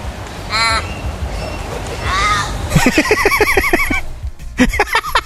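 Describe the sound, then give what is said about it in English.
An Australian crow gives a series of drawn-out, wailing caws that sound strikingly like a cat's meow, several calls in quick succession, loud over a steady background hiss. “This is a crow. All right, hold on. Australian crow. Sounds like a cat.”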